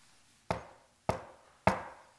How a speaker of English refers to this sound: You know, Jesus says in Revelation chapter 3, "Behold, I stand at the door and knock." Knock.